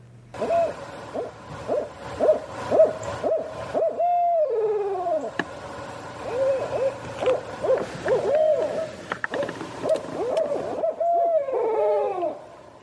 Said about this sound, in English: And I love this one. This is a barred owl. That's B-A-R-R-E-D, not like the traveling medieval musicians.